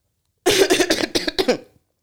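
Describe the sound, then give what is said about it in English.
A loud burst of several rapid coughs in a row, lasting just over a second, followed by quiet with no talking. “Guys, I promise I don't have COVID. I just have a cough.”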